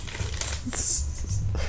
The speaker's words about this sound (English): This nigga's always eating snacks, y'all. That's probably sounds funny when you hear the little paper rip it open.